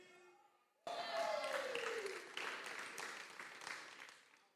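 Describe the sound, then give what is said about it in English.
An audience suddenly bursts into loud, dense clapping, with the men in the audience clapping, that carries on steadily for several seconds, with a brief falling vocal cheer rising out of the crowd as the applause begins. “All the men clapped and all the women were like, I don't like that point.”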